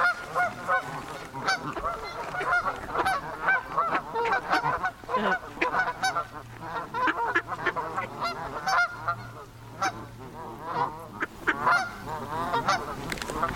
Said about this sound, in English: And we are currently surrounded by geese in front of a huge pond.